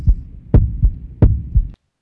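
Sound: heartbeat sound effect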